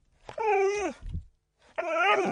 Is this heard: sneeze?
no